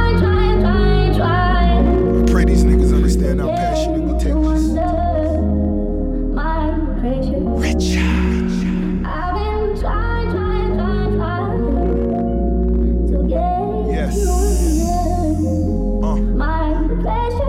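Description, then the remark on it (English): A hip-hop track plays loud and steady for the whole stretch, driven by heavy, booming bass and dense layered melody, with no pauses or talking over it. “Give me a little snippet of it. Give me a little taste of this joint right here.”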